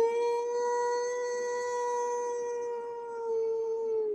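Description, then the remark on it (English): A single long, throaty howl held at a steady pitch for about four seconds, loud, with no other sounds around it, likely a human voice imitating an animal. “And then he steps back and he howls a deep, throaty howl.”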